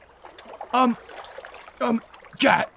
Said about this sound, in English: And then Jason Statham just disappears under the water without a trace. There's just splashes of water and then nothing.